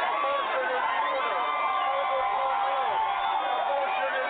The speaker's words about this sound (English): Yeah, I want to play a clip of Crazy Bernie with the crowd outside the White House yesterday.